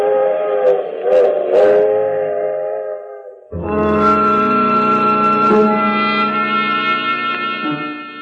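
A train whistle blows two long, steady blasts, the first slightly wavering and the second fuller and sustained. It is loud as the train pulls away from Sooner Falls, continuing on to New York, with no voices.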